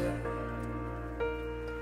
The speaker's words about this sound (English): And just ending on that grand piano there. Sounds like some rain as well.